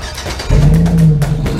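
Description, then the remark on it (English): The engine of a 2023 midsize luxury pickup truck kicks in abruptly and revs into a loud, steady low roar, holding strong for about a second with no voices. “I can get us to the game in my 2023 midsize luxury Affable Chat brand pickup truck.”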